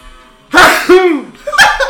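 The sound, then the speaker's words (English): A loud sneeze: a sharp breathy burst with a voiced, falling 'choo' tail, followed moments later by a second shorter burst. “I had to sneeze.”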